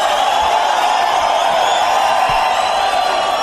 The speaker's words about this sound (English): The crowd seems to like it.